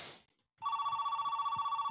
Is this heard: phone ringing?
yes